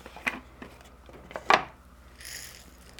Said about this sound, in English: And we grind it. We got a little grinder that sits on the counter, and she grinds it up and makes cornmeal here with it. Look how fine this is.